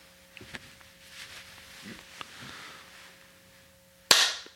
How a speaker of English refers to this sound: Right, do me a favor. Clap and then go.